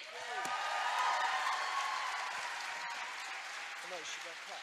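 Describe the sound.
A crowd claps steadily for several seconds as a poem reading is introduced at an evening event, a dense, even wash of applause with a few faint voices calling out underneath before it starts to fade.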